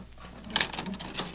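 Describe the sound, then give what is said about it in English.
A door latch clicks and rattles open, a short run of sharp metallic clicks and a scrape as the door swings, with no voices. “Open the door.”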